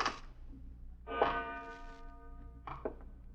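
A clock bell strikes three o'clock, three clangs each ringing out with a sustained metallic tone that lingers before the next stroke, over a low steady hum.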